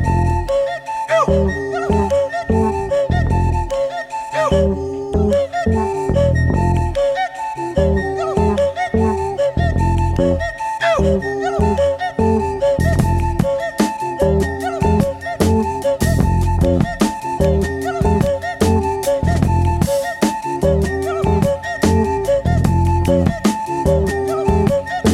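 A funky 1973 jazz song recording opens with a whistle-style intro of breathy, whistle-like hoots in a repeating syncopated pattern over a steady bass groove, with crisp percussion joining halfway through; loud and continuous, no talking.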